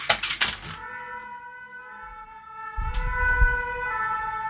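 A police siren wails steadily from the street outside in central Paris, heard through an open window, sustained and fairly loud, with low rumbling traffic noise building underneath and a brief clatter at the start.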